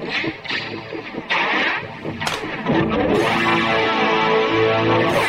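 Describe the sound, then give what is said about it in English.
An electric guitar plays through a shimmering chorus with echoing delay repeats, notes smearing into a dense, swirling wash that swells louder and fuller partway through. “I like some cool choruses, cool delays. You know, echoes.”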